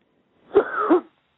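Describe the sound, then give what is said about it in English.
A single deep, hoarse cough from a man, heaved out from the stomach in two quick pushes, fairly loud, with a rasping, strained edge and no talking around it. “Just take a deep cough, brother, out of your stomach and just cough it out.”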